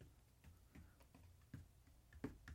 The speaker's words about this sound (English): I'm tapping the desk like I'm putting dots on a piece of page, like a paper.